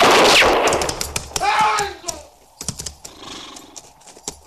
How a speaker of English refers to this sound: It was Hook shot him, sir, before anyone could stop him.